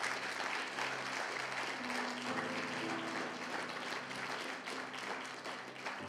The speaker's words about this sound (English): I think it'd be appropriate before we stand. Can we just thank her and applaud her for all of the amazing work that she has done?